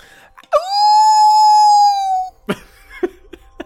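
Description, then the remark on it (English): A person mimics a dog's howl: one long, loud, sustained wavering note lasting nearly two seconds, followed by a few short breathy sounds and a brief vocal noise. “You howl up.”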